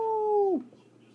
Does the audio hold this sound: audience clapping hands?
no